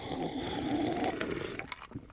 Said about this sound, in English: Probably so I'm just going to do a sip. Just a sip. Just a sip.